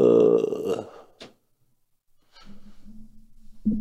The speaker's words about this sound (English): He just yawned in the middle of our interview, man.